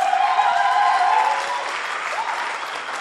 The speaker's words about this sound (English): I want us to clap our hands for the dancing stars.